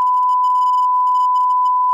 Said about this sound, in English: Now, I'm going to beep it in 3, 2, 1, and you just got to say it to me, okay?